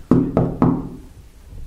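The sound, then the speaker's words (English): Three firm knocks on a wooden hotel suite door, number five, evenly spaced, each with a dull thud and short decay, followed by quiet room tone. “Yeah, yeah, I'll knock.”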